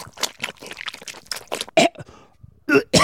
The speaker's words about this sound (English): I just swallowed too hard. I thought it was poison for a second.